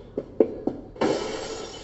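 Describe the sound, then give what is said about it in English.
Three quick thuds like running steps, as someone takes a running start and jumps through a large window, lead into a sudden, bright crash of window glass shattering, its crackling debris hissing on and slowly fading through the final second. “took a few steps back, got a running start, and jumped through one of the large windows.”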